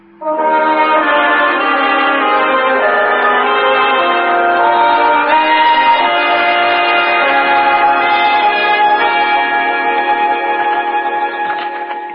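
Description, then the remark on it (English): A heavy funeral church bell tolls steadily, its deep overlapping ringing hanging in the air for several seconds, loud and resonant with no voices present. “I'm anxious to talk to her before another funeral bell begins to toll.”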